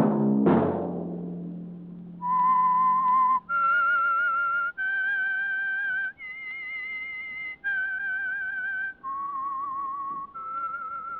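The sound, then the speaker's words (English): A short musical chord rings out and fades, then someone whistles a slow, clear tune of about seven sustained notes, fairly loud, with brief gaps between notes; the whistle is the signal tune of a weekly Wednesday-night program sponsored by the Signal Oil Company. “That whistle be your signal for the Signal Oil program, The Whistler, each Wednesday night at this same time”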